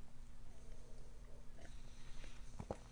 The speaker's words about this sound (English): Sip of tea.